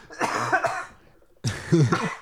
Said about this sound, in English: I started coughing.